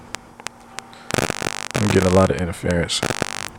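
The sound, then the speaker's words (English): A steady low electrical hum with scattered sharp clicks, then a loud burst of crackling static, followed by garbled, distorted voice-like sounds breaking through the buzzing interference. “I'm getting a lot of interference though.”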